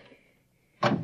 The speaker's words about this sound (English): Now, this door is open.